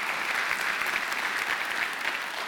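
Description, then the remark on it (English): An audience at a morning church service gives the Lord a round of applause, clapping steadily in a dense, even wash of many hands with no voices standing out above it. “Yes, again, can we give the Lord another round of applause this morning?”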